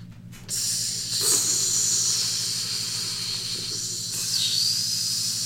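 A steady sizzling hiss like food searing on a hot grill, starting abruptly and continuing for several seconds over a low rumbling hum, with no voices.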